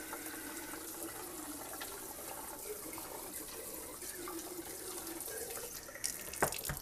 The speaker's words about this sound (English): but the secret is putting the faucet on a really low amount of water coming out. That way, there's no splashback.